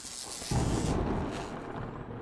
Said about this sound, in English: Lots of lightning, lots of wind.